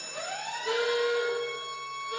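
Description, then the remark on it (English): An electronic alarm sound effect: tones rise and sweep upward, then settle into a steady, harmonic-rich wail that stays loud for about two seconds, with no voices. “Yeah, a little late on the this is not a drill music, but anyway.”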